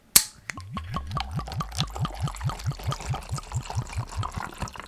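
A sparkling vodka fizz cocktail of vodka, elderflower and pear, from the company Two Chicks, poured into a glass: a sharp crack at the start, then a steady run of quick, rhythmic glugs, clear, with no one speaking.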